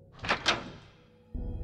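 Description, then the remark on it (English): A child's bedroom door opens at night with two quick brushing scrapes as it drags over a rug, then the sound fades and a low, steady rumble rises at the end. “One night while we were in bed, we heard our son's door open as it scraped against the rug.”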